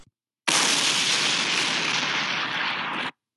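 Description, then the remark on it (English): A sudden, loud blast effect bursts in and roars as a steady, dense rush of noise for a few seconds before cutting off abruptly, with no voices. “Parker was about to go on a walk, then he heard an explosion.”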